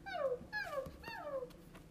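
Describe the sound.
A person imitates small dogs yipping: three high, whiny yelps that each slide downward in pitch, clear, spaced by brief pauses with no other talking.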